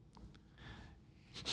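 A few short, sharp sniffs into the microphone, quick nasal intakes of breath with a breathy hiss, ending in a louder, stronger sniff, as a person smells the aroma of a beer.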